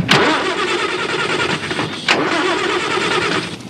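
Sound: car engine starting up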